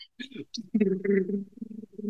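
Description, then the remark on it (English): A man's voice imitates a drum roll with a low, buzzing, sputtering rumble held for over a second, preceded by a few short breathy hisses and clicks. “attempting to do a drum roll, not him dropping his guts.”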